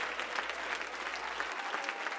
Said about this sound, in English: Come on, let's give Jesus a hand clap of praise this morning.